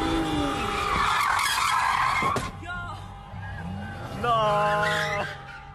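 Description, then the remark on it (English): Loud, sustained tire squeal from a car drifting sideways, with engine roar underneath; it dips briefly, then a second shrill screech rises before trailing off. “Because I mean the real thing, like the real difference is whether or not you understand like what a car does when you start swinging it,”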